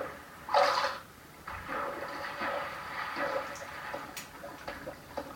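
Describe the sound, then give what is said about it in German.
A loud video game splash as something plunges into water, followed by several seconds of quieter bubbling and swirling water with a few faint clicks. “Der Sound einfach, wie ich eben in das Wasser gesprungen bin.”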